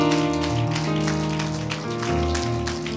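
A church audience claps hands to the Lord in a dense, steady patter over sustained organ-like chords, the clapping loud and continuous throughout.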